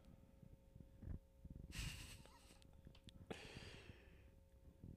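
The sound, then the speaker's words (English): Two airy, hissing breaths picked up close to a microphone, a longer one near the start and another later, over a low background hum with no talking. “Well, I can hear you breathing too, but what do like other people do, like Rogan and this and that?”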